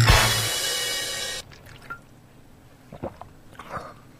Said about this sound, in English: Oh, sorry, I'm drinking water,